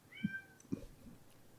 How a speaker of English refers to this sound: That's the store. That's one of the store cats. It's fine.